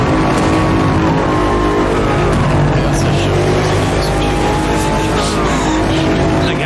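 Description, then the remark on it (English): A loud, steady engine of an M8 sports car roars continuously in in-engine racing game gameplay, its pitch rising and falling with gear changes and throttle, with faint tire noise. “Let's jump in with the M8.”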